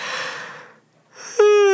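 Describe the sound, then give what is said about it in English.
A single yawn: a long breathy intake, a brief pause, then air rising into a steady, drawn-out voiced tone. No one speaks. “What am I yawning? That's not a good sign.”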